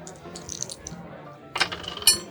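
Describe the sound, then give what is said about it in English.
Dice clatter and tumble across a tabletop in a couple of quick bursts for an influence roll in a game, with sharp clicking impacts over a low background murmur. “Your dice suck, Steve. Why did I borrow them from you?”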